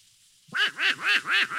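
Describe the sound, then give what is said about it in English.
A raspy cartoon voice of Donald Duck quacks four times in quick, rhythmic succession, loud, after a brief silence, a squawking imitation rather than a real bird. “What's that noise, Mickey? Oh, that's Donald Duck.”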